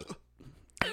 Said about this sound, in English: I fucking burp, dude.